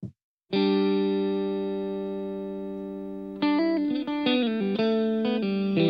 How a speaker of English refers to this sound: So the result is our first song, ladies and gentlemen, I'm going to share with you.